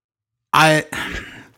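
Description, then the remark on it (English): A dog snores once, fairly loud: a short, rough, tonal snort followed by a breathy, hissing exhale, with no other sound around it. “I can hear the dog snoring.”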